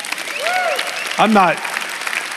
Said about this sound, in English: Always remember, this is a two-way conversation, so help a brother out, you know? You can clap now and then.